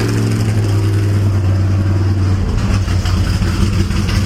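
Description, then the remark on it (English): A racing car engine on the car next door, revved by Matt Jackson, rumbles loudly in a steady deep idle that shifts and roughens partway through as it revs, filling the whole clip with no talking. “There goes the engine on the other car next door.”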